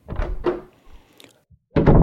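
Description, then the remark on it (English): A few solid, hollow knocks on a wooden door, loud: two raps, a short pause, then another quick pair, a sound effect in the radio program Murder, Please. No one speaks. “Sound. Knock on door.”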